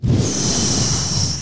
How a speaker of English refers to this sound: And if you don't know what that is, that's a puff. That's the smoke right in your face. Right in your face.